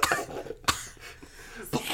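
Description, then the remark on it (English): Three short, harsh coughs spaced out over a couple of seconds, with faint throaty rasping in between and no talking. “They're coughing up candy cane dust.”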